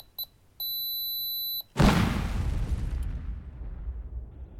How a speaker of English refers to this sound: Attached to his neck was a timed pipe bomb that produced a rapidly accelerating beeping noise.